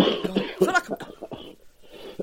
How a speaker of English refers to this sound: Oh, my God, the pair of us. How does anyone listen to this? They must get to the first coughing fit and then go, oh, fuck this.